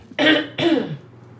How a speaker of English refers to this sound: Woo, this is important because I'm going to clear my throat.